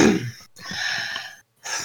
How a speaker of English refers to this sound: Ah, yes, I know what time it is, and it's going to sound a little bit more fun because of my cough here, but...